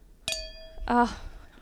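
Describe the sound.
A single bright clink of glasses touching in a toast over drinks on a Sunday night, its high ringing tone lingering for about half a second before a voice starts talking over it.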